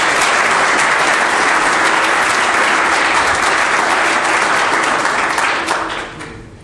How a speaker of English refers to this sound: But please would you give a very warm welcome and round of applause to Christopher Lando and Dr. Tony Campolo.